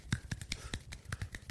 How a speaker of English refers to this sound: Perfect. Like, I can't do it. I can't clap as fast. That's right handed. Yeah. That's left-handed. I don't have as good of a left-handed clap.